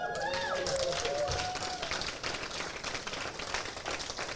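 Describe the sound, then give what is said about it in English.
An audience claps for a speaker's getting sober, a steady, dense burst of applause lasting several seconds, with a few cheering voices rising over it at the start before the clapping carries on alone. “Who knew that people would clap for you for getting sober?”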